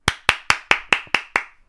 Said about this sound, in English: And this girl finally got an iPhone. So congrats, Kaylin. Let me clap for you, girl.